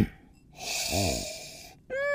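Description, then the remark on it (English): A long, steady sniff of a glass of Double Century Shiraz wine at a tasting draws air in with a breathy hiss for over a second, a faint low hum briefly underneath, before a voice starts speaking at the end. “And that means it's time for us to do a tasting of Double Century Shiraz, beginning, as always, with the sniff.”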